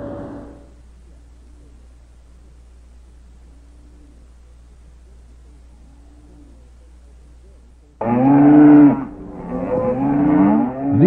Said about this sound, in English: Are some very thirsty cows. It's a real big problem. Actually, we have some leftover feed left in the hills from last year with the little amount of rain we did have, but we aren't able to turn any cattle out because there's no water for them